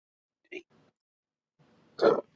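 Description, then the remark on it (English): A short, sharp vocal burst, then a pause and a louder, rougher belch-like eruption, with faint breathy murmuring between them. “That burp hurt.”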